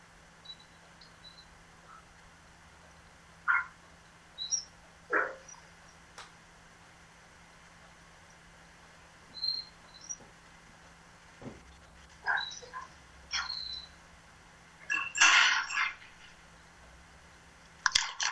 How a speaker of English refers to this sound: My dog's downstairs a bit upset. I'm just going to have a quick look at what's the matter. Okay. What's up, Spirit? What? I'll be down in a minute. Yeah, I think he can sense thunder in the air.